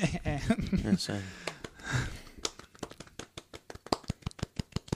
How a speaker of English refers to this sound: Small round of applause.